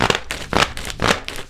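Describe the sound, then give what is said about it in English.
A distinctive convention-style clapping, the way people clap at DragCon: rapid, crackly bursts of sharp hand claps arriving in uneven clusters, several flurries in a row with short gaps between them, fairly loud and with no voices. “This is how they clap at DragCon.”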